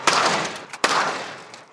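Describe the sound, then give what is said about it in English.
A storm door is slammed shut repeatedly to test whether it would break: three sharp, loud bangs, each followed by a rattling, fading ring, spaced roughly evenly apart with no talking. “We tried slamming it over and over again.”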